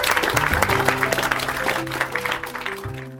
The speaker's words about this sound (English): Let's give another wonderful round of applause. You guys were fantastic. Thank you so much.